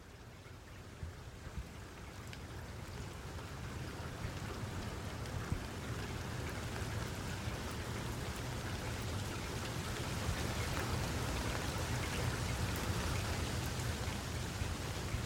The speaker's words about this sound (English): The hard rain against my face wakes me.